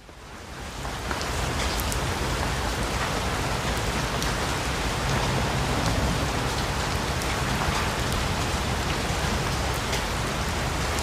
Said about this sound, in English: Then the rain began.